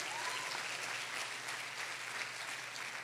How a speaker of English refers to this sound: Aleluya, dale un aplauso Hallelujah. A Jesús. Go ahead and give Jesus a round of applause.